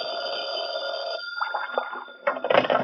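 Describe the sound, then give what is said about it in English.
A telephone bell rings in an office with a steady, sustained electric jangle for about a second, then gives way to a few clattering handling sounds and rustles. “I'd gone back to my office to cool my heels for a while when the phone rang.”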